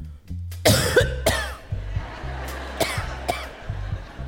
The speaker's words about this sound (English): You couldn't just cough once. No one coughs just once. You have to remember to trail off the cough.